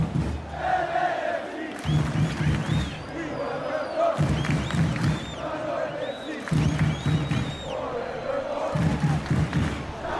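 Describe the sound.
A loud soccer stadium crowd roars and chants continuously, getting behind player Atuesta after his shot, with heavy rhythmic surges of voices arriving about every two seconds and higher shouts and whistles ringing over the din.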